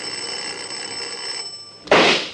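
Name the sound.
bell ringing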